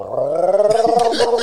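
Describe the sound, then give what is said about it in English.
A voice imitates an old refrigerator starting up: a steady, loud, low droning hum that turns rough and sputtery halfway through, with rattling bursts for about a second and a half. “Does your refrigerator start up like...”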